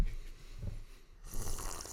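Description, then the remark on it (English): Someone takes a noisy sip of water: low, gurgling slurps at first, then a brief pause and a louder, breathy hiss of air drawn in with the liquid. No one speaks. “All right, this is me sipping water.”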